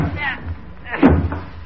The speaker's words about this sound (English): Open the door, Molly.